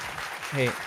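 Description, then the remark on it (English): A brief burst of canned crowd applause from a soundboard: dense, hissy clapping that runs steadily under a short voiced sound rising over it midway through. “The crowd was a little wild there.”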